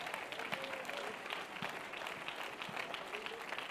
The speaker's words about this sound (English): If you believe that, why don't you clap your hands this morning?